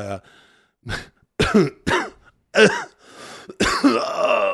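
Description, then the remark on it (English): A run of harsh, strained, painful coughs and throat clearing, five or six rough bursts separated by short pauses, the last one longer and groaning. “It hurts to cough.”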